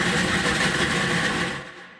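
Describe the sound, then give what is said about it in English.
A lottery bouncing ball machine filled with numbered balls runs at Cincinnati's Q102 radio station, its blower roaring steadily while the tumbling balls make a dense, continuous clatter that trails off toward the end. No one speaks. “We're going to fire up that bouncing ball machine over there.”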